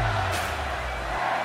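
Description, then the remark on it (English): A sell-out college football stadium crowd of 90,000 roars in a steady, dense wash of cheering that holds at a fairly loud level for the whole moment, with no clear individual voices standing out. “Sell out crowd, 90,000.”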